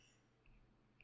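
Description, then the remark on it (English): Two faint, crisp computer mouse clicks about half a second apart, made while clicking on Alicia Vikander to look her up, against a quiet background hum, with no talking. “That was just me clicking on Alicia Vikander because I wanted to see what the fuck she had been doing lately.”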